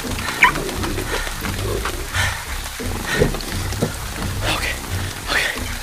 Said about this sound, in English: The wolves. I can see them.